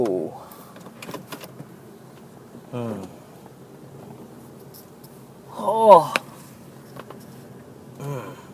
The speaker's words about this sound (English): Wonder if that came through on the mic. Hope it did. Just cracked my neck. It's a good feeling. It's a good feeling.